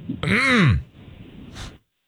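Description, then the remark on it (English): A loud, voiced throat clearing with a rough, rising-then-falling rasp, followed a moment later by a short, breathy second clearing. No one speaks. “Let me clear my throat.”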